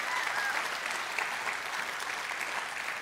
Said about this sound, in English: If you're gonna clap, clap for God's faithfulness in your life. Yeah.